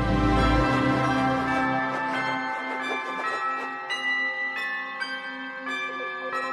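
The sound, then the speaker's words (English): Bells ring out within a piece of music, marking where the music changes from day to night: a rich sustained wash of tones with fresh strikes arriving every half second or so toward the end, bright, no voices. “And really, it was the bells that changed that.”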